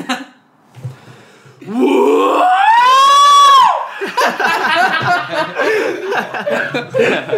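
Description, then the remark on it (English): A performed guttural "tumour scream": a loud, rough vocal burst that rises into a strained, sustained wail for about two seconds, then breaks into laughter and overlapping voices. “I think one of the only things you said on stage was the tumour scream.”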